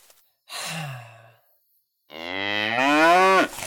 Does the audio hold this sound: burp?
no